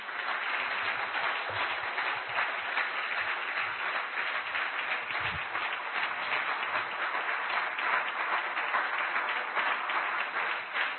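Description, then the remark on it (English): A church audience claps steadily and loudly for about eleven seconds, the dense patter of many hands holding an even level throughout with no voices standing out. “Did you clap for Pastor or did you clap for God?”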